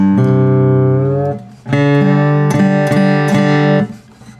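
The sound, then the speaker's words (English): A stringed instrument being retuned to a different tuning: loud, ringing notes sustain and are re-plucked several times, their pitch shifting slightly between strikes, with no voices. “I might get into a different tuning, and I'll play …”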